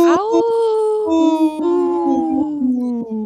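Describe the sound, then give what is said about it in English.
A wolf lets out a long, mournful howl that swoops up at the start, then holds and slowly sinks in pitch, loud, with no voices around it. “This portion of the show is supported by Howling for Wolves, protecting wolves for future generations.”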